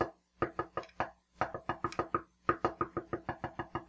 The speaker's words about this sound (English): Why is it knocking?